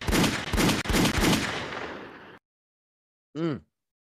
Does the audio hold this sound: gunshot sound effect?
yes